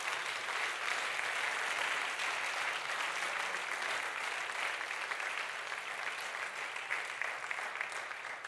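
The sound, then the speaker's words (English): An audience claps its hands as a hand clap of praise, a dense, steady wash of many overlapping claps that holds a fairly even loudness for the whole stretch, with no speaking heard. “Let's give him a hand clap of praise in the building.”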